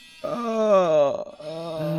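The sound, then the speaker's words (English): A chair creaks loudly as someone leans back in it, in two long, groaning squeals, the first rising slightly then sagging in pitch, the second lower and steadier, with no talking. “And I can just do this number where I can just kind of lean back. Yeah, and just make tons of noise with your chair.”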